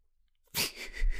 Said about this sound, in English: Your tummy just growled so loud. My tummy just growled. I think it got picked up on the mic.